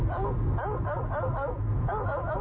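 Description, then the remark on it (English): A dog barks and yips in a quick run of several short, high-pitched bursts, loud and steady over a low background hum. “My dog says they should have access to shelters also.”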